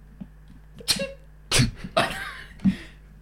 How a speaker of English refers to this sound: Sneeze quietly.